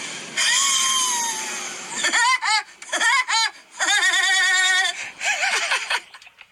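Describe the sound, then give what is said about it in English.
A voice imitates Woody Woodpecker's laugh, played from a 10-second video: a run of loud, high-pitched, warbling bursts in a choppy rhythm. It follows about two seconds of harsh, hissy noise. “This is my impression of a Woody Woodpecker.”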